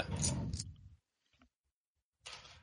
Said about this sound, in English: Let me roll my five dice. Everybody roll finesse.